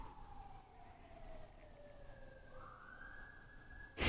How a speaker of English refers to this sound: The sirens continue, crisscrossing the streets of New York, day and night. Another soul is in that vehicle. Another one of us.